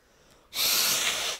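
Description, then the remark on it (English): A single loud sneeze bursts out after a brief quiet moment, a sharp, hissing blast of breath that lasts under a second, with no talking. “I hate when I sneeze and it fucks up.”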